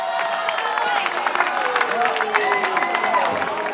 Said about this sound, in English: So I think my wife has done a great job, and we need to clap for her.